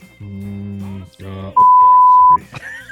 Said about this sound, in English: I knew I was going to have to beep it. I knew it.